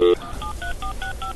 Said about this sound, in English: Oh, I hear dial tones.